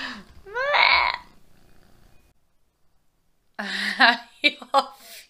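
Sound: domestic cat purring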